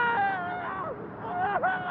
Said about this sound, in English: Jesus, what the hell was that? I don't know. Sounded like a scream.